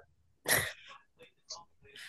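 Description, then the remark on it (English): A single sharp, loud sneeze bursts out, followed by a few brief, softer vocal sounds and breaths. “Bless you.”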